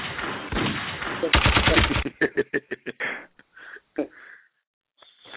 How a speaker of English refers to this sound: Where is my gunshots at? What's my gunshots?